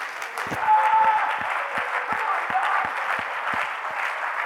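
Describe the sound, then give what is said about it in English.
A church audience claps hands to the Lord in a dense, steady wash of applause, with sharper individual claps popping out at a fairly regular beat throughout, sustained at even loudness. “Would someone just clap hands to the Lord?”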